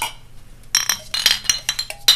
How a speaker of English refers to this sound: Oh, God. Sorry if that was super loud in your ear. Clink. Sorry if I hurt anyone during that.